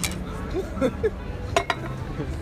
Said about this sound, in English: we'll start with the beer clink.